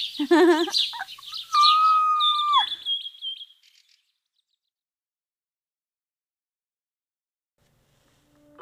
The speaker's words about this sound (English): Birds.